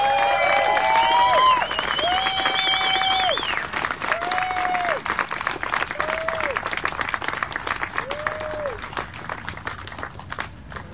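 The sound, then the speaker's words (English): A large crowd at a live rally in Colorado on August 28 applauds itself and the speakers steadily for about ten seconds, dense clapping with cheers and whistles rising over it near the start, then tapering slowly as scattered shouts continue. “Please give yourselves a round of applause and all of our speakers a round of applause.”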